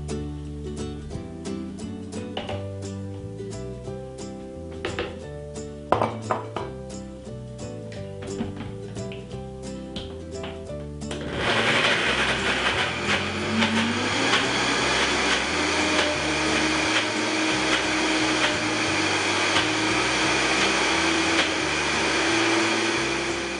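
Light background music plays alone for about eleven seconds, then a loud Vitamix blender motor kicks in and whirs steadily to the end, its dense roar swamping the music as it blends a non-dairy avocado chocolate mousse mixture for a raw pie filling.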